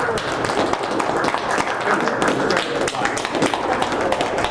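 Dense, steady hand clapping fills the whole clip, many sharp claps running together into a continuous patter at an even, fairly loud level.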